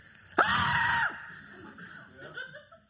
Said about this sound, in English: Okay, get your most manly disciple scream ready, all right?